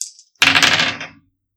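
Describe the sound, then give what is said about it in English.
Dice clatter and rattle across a hard tabletop in a short burst of clicks that fades out after less than a second, with no one speaking, as dice are rolled for an attack, one showing a 19. “One is a 19 on the dice, one is a 15 total.”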